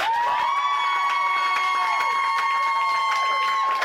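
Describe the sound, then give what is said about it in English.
An audience cheers loudly and steadily for about four seconds during a vote by applause for Jean-Luc as the best captain, a dense roar of shouts and whoops with shrill, sustained high-pitched cries running through it. “Let's hear it for Jean-Luc.”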